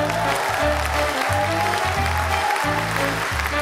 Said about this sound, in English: There's the applause.